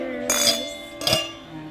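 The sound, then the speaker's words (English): Glasses clink together as two women toast to their ancestors, two bright chimes about a second apart, each leaving a high, ringing tone that lingers before fading. “And with that, the ladies toasted to their ancestors.”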